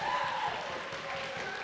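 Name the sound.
audience cheering and clapping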